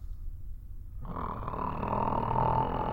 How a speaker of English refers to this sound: Oh, great Caesar's ghost! That is the snore of a man who sleeps alone.